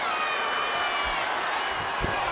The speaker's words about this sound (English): Smatterings of the crowd begin to cheer as they can see the Undertaker is busted wide open.